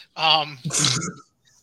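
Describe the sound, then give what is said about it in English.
A voice mimics a sneeze: a rising voiced "ah" followed by a sharp, breathy hissing burst, one loud imitation lasting about a second. “It's like, achoo!”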